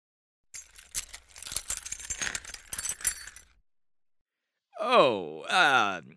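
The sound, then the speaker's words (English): A bunch of keys jangles for about three seconds as they are handed over, a bright, irregular metallic clinking, followed after a pause by a short voiced vocal sound. “Give me the keys so I can get this over with.”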